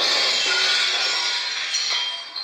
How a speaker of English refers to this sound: Then they burst through the window into the room so that the glass clattered.